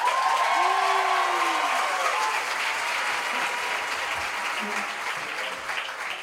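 A large concert crowd applauds a band loudly with dense, steady clapping, whoops and shouted cheers rising over it at the start, the roar staying strong before easing slightly toward the end.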